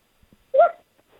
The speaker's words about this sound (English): Sounded like his dog.